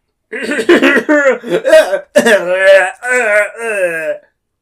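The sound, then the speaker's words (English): A person performs a harsh, rasping coughing fit after a huge puff of fungal spores hits his face, about half a dozen loud, voiced hacks in quick succession, close up and alone, sounding like a vocal imitation of violent coughing. “And he gets a huge puff of spores from the fungi near him and goes right in his face and he starts coughing horribly.”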